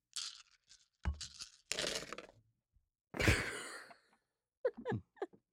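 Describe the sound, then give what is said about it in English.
Rattling and clattering in several noisy bursts as dice are shaken and rolled, ending with a few quick sharp clicks as they settle. “Ominous that he's rolling dice for this.”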